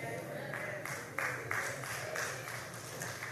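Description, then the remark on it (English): Sparse, scattered clapping from two or three people, a thin patter of hand claps that holds steady for a few seconds without building into full applause. “Well, y'all, two or three of y'all clapping because the others...”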